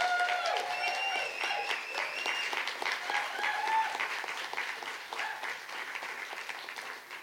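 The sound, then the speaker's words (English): A crowd applauds steadily for several seconds, dense overlapping claps forming a continuous wash of sound with a few whoops and cheers rising above it, fading slightly toward the end. “It's important that you clap”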